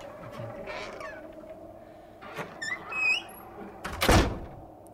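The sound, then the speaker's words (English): A door creaks open with a series of high, squeaky whines, then lands with a loud thud. No one speaks over the sound. “I'll just open this other creaky door and show you yourself in the future.”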